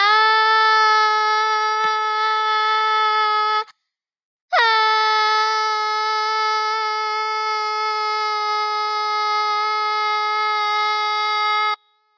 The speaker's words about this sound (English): Hopefully, you guys just enjoyed those like 10 seconds of me screaming.